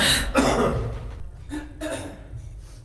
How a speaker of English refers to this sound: You need me to give you a heads up when I'm going to clear my throat?